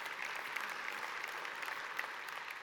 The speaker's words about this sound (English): And so as soon as we get the word from Bethany Christian Services, Central will be co-sponsoring refugee families. We've had some I hear some cheers, come on.